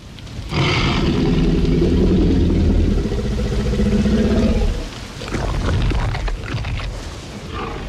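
A deep, menacing growl of a hungry T-Rex from the film Jurassic Park swells into a long, loud rumbling roar with low tonal harmonics, breaks off, then a second, slightly quieter throaty rumble follows. No one speaks.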